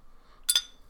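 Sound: cracking open a beer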